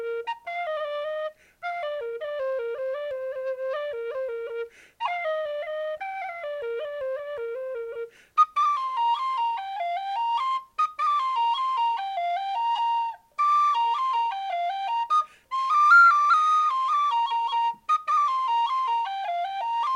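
A whistle plays a lively folk melody in quick, ornamented phrases with short breaths between them, clear, with a faint reverb from the room where it was recorded trailing the notes. No voices.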